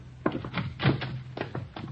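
Someone comes out of an apartment door down the hall; the door closes with a solid thunk, followed by a few softer knocks and clatters against a low steady hum.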